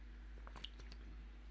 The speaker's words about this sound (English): I need some water, hold on.